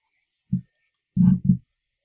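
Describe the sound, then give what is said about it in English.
Dice rolling on a table: one short knock, then a longer clattering tumble followed closely by a final rattle, moderately loud with no voices. “All right, let's roll some dice.”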